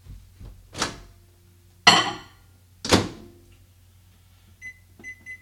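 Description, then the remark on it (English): A microwave door thumps open and shut with a few solid clunks, followed by three short, bright electronic beeps from its keypad, with no talking, as a stick of butter in a cup is put in to melt. “And we're just going to put it in the microwave for just a few moments until we get it nice and melted, okay?”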